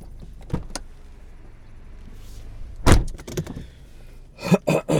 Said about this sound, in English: Sorry. I'm having an awkward time parking my car this morning.